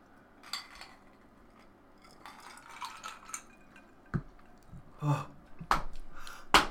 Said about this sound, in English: So however then, let's get on a cheers, mate. We'll clink them.